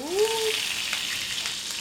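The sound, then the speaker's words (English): Kabocha squash wedges sizzle steadily in butter and oil on a hot sheet pan before going into the oven to roast, a continuous frying hiss, with a brief rising squeak-like tone right at the start. “So the kabocha squash, sliced into wedges, goes onto a hot sheet pan, sizzling with butter and oil.”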